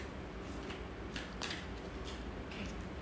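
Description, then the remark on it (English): A woman shuffles tarot cards, heard as soft papery rustling and riffling with a few brisk bursts over a steady low background hum. Quiet, with no voices. “Yeah, so she's shuffling.”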